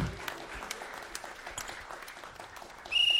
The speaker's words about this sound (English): He blew the whistle. Now it's official.